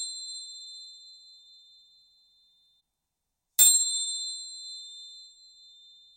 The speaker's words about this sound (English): Before we end the meditation now with the sound of the chimes.